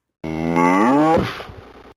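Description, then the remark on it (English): A single loud 'moof' sound effect of Claris the dog cow, a character from the early Mac icons that began as a Cairo font glyph: a drawn-out, cow-like harmonic bellow that slides and wavers in pitch before breaking into a rougher, fading tail, heard alone. “Mac was from the System 1 suite of icons from Susan Kare, and another one that made it into the early icons, although this one actually began as a font glyph in the Cairo font, is a famous character in icon lore, Claris, the dog cow. She says, moof.”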